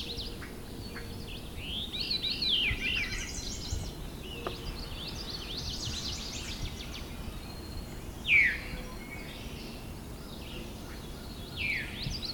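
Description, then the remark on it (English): A veery gives a single clear, downward-slurring call, loud and close, amid a busy backdrop of fainter, more distant birdsong and a steady low outdoor hum. “There's the viru call.”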